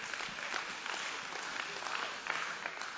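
An audience applauds, many hands clapping in a dense, steady patter that holds at an even level for about three seconds, with no one talking over it.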